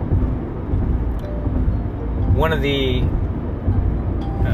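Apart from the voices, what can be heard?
car interior road noise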